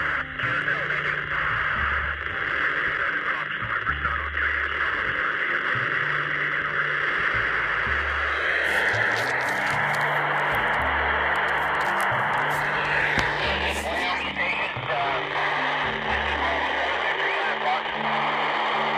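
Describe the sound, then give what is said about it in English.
Crackly radio reception from a pass of the AO-91 amateur radio satellite: faint, garbled voices come and go beneath a constant loud hiss of static, with low warbling tones underneath throughout, as the signals fade out while the satellite goes over the horizon. “And you can hear the signals are starting to fade out as we get over the horizon.”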